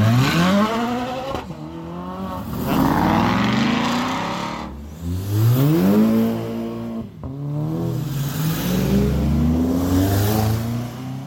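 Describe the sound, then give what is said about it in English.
The powerful engines of an Aston Martin, a Ferrari, an Audi and a TVR rev hard with rising and falling pitch. They roar as the cars accelerate away one after another onto a circuit to give passengers a quick ride. The sound is loud and continuous with no talking. “Okay, the Aston Martin, the Ferrari, the Audi and also a TVR are now due to go out, so I'll be quiet and just listen to the sound of the cars going.”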